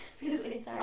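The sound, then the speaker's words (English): A single sneeze: a short voiced, rising intake followed by a loud, sharp burst of breathy noise right at the end. “Sneezing and allergies need to just hold on.”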